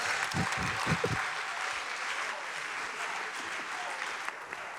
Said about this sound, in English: So as he comes up, why don't you clap?